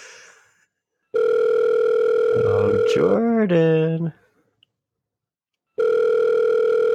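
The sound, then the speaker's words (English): An outgoing phone call to a man who does not answer rings out with a steady electronic ringback tone, sounding twice with a pause between. The tone is loud, and a voice briefly speaks over the first ring. “Let's try to get him on the phone here. You better answer.”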